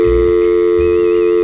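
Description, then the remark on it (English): Telephone line 1 of a radio call-in contest is dropped: a steady, droning electronic tone holds for over a second, then cuts off abruptly with a sharp click, leaving near silence. “Jen dropped the ball and the call.”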